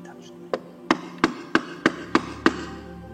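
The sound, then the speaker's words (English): Seven firm knocks on a wooden door in a steady, even rhythm, each a sharp, hollow thud that fades quickly, against a quiet background. “But one of my favorites, there comes a knock one day.”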